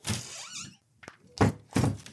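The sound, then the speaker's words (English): A shutter creaks and rattles, then a woman leaping out of bed bangs it open with a sharp knock followed by two loud, heavy thumps. No one speaks. “She leaps out of bed and bangs open the shutter.”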